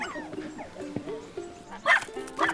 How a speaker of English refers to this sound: we're going on a dog walk with a pack of mischievous hounds. Hiya. We're chasing the dogs. There's more gone down there.